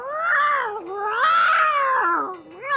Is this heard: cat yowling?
yes